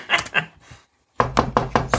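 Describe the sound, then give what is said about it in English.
Someone raps on a door: two knocks, a brief silence, then a quick, even run of five firm, loud knocks, with no one talking. “I'm going to send some missionaries to your door.”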